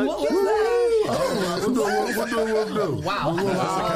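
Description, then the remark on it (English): A person's voice imitates a wolf growl, loud, with wavering pitch that rises and falls in several drawn-out bursts over a few seconds. “I got to set a whole name. The Wolf Growl.”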